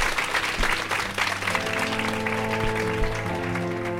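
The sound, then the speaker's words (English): An audience claps and cheers in a steady, dense wash of applause for the guests at the end of a show, and after a second or so a sustained musical tone rises in underneath the clapping and carries on to the end. “Please give a round of applause for your amazing guests.”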